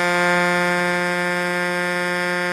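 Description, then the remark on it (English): A loud, sustained car horn blares steadily for about two and a half seconds, deep and brassy like an 18-wheeler truck horn, with no talking over it. “Let's hear your horn.”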